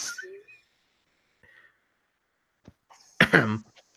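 A single loud cough bursts out near the end after a stretch of near silence with a few faint clicks and breaths.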